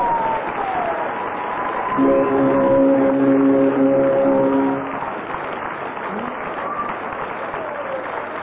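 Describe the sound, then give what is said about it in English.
An audience applauds steadily for several seconds to pick the winning team of a game round, a dense rushing clatter of clapping. Partway through, a sustained buzzy, horn-like tone sounds for about three seconds over the applause. “Yes, you win on the audience applause”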